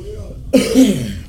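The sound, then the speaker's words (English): A single harsh cough bursts out after a brief quiet moment, raspy and throaty, trailing off with a rough, phlegmy rattle. “just go up to the front like you're trying to get some of the gum right there by the register and start coughing.”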